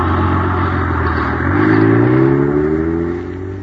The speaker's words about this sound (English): Zooming down the highway, pulled along by an honest-to-goodness motor truck. Say, gang, you know how big that rocket clubhouse is? It's 35 feet long, big as a freight car. You know how much it weighs? A tremendous 10,000 pounds.